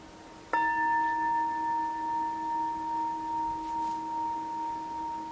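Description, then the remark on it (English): A single meditation bell is struck once in a small group session, giving a sharp onset followed by a long, steady ringing tone with a gently wavering shimmer that slowly fades over several seconds. No one speaks. “And when I ring the bell, I'm going to ask you to, if you're comfortable, each share what that would be, if you would like.”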